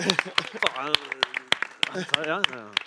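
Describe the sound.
Scattered, uneven hand claps ring out, sharp and fairly loud, while people keep talking over them throughout.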